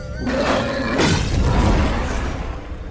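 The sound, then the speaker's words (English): A Blazerback creature breathes fire in a jungle: a loud, sustained roaring whoosh of flame with a deep rumble, swelling into a harsher burst partway through before trailing off slightly. No one speaks. “Did that thing just breathe fire?”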